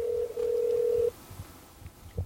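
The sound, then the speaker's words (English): A telephone line tone sounds steadily for about a second, with a tiny break near the start, then cuts off, leaving quiet background with a few faint low thumps. “Do you have any dialing music or anything for us?”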